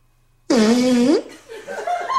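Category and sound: human body sound, fart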